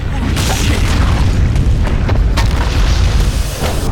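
A deep, continuous rumble fills the low end throughout, loud and steady, with scattered crackling bursts and brief sharp transients layered over it, like the ground shaking in a game cutscene.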